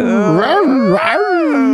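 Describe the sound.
A person imitates a dog with a loud, continuous whining howl, the voice sliding up and down in pitch for a couple of seconds.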